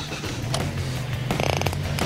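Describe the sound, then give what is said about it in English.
A car engine starts: a low, steady droning rumble runs throughout while bursts of rapid, rhythmic mechanical clatter and creaking rise over it, loudest in the middle and again at the end. “Okay, and do you know what I'm going to end this episode? Yeah. Starting the engine.”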